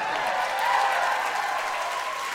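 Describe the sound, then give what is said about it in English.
A crowd at a live music show applauds steadily for banter between songs, a dense wash of clapping that holds an even loudness throughout, swelling slightly early on before tapering a little toward the end. “Let's hear it for awkward banter between songs.”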